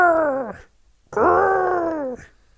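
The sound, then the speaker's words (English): A voice imitates a penguin's high falsetto growl in two loud, strained calls, the second longer, each holding a steady pitch before sagging downward at the end. “Penguins so grr. They growl with a high. They sort of, it's a falsetto growl.”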